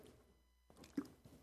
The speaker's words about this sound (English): And reading along with me, let me get a drink of water first.